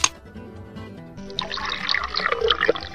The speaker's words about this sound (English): Is the can opener here? Where's the can opener? Huh? Oh, here. Just for fun, friends, I'm going to open a can just to see what's inside.